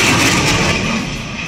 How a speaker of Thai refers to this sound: และเสียงที่ได้ยินไปเมื่อสักครู่นะครับคือเสียงที่เราเรียกว่าโซนิกบูมครับหรือเสียงกระแทกที่เกิดจากยานพาหนะเดินทางด้วยความเร็วเหนือเสียงซึ่งอาจจะมีความดังถึง110เดซิเบลเทียบเท่ากับเสียงฟ้าผ่าและอาจจะเป็นอันตรายกับแก้วหูของเราได้ครับ